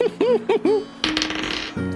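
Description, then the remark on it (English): Dice rolled for an animal handling check in a tabletop game clatter and rattle across a table in a bright burst lasting under a second, fairly loud, landing on a 10, preceded by a few short, rising-and-falling tonal chirps. “So that's a 10 on the dice.”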